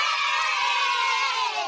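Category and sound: crowd, crowd cheering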